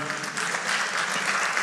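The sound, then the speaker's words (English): An audience applauds, a steady wash of many hands clapping at once, dense and even in loudness throughout its brief run, with no voices standing out. “But you know, honestly, yeah, we could clap for that.”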